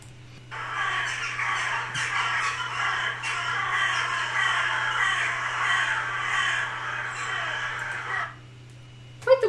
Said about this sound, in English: All right, now here is a murder of crows. Okay.